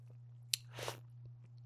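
A sip of carbonated water with Tarani sugar-free: a sharp click, then a short fizzy, hissing slurp lasting a fraction of a second, followed by a few faint ticks over a steady low hum.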